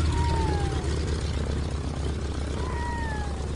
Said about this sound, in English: With a shove, the float plane taxis to the far end of the lake, where a pair of red-throated loons watches with alarm.